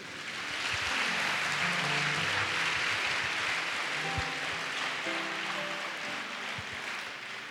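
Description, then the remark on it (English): An audience claps for Jesus during a sermon in a dense, steady roar of applause that holds for several seconds, with faint musical tones underneath, then eases slightly toward the end. “Clap for Jesus.”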